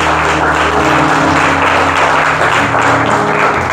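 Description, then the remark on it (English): A loud round of applause at a church service, given as a hand to the Lord: many hands clapping in a dense, steady wash that holds through the whole stretch, with a faint low hum underneath and no voices. “Let's give a round of applause, a hand to our Lord and Savior.”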